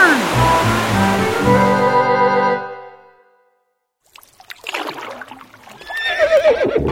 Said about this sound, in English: I hear a big rumbling. Something over there. I ain't a meaning to get anyone afeard, but I'm a hearing it too. Is it over yonder? There, I see it. A huge tidal wave of water coming this way.